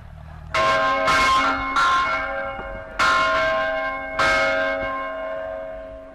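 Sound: church bell ringing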